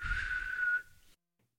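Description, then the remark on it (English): A single breathy whistled note, an attempt at whistling the X-Files theme with dry lips, held steady for about a second over a low background rumble, then thinning out and stopping abruptly, fairly loud, with no one talking. “I take it that was your attempt at the X-Files.”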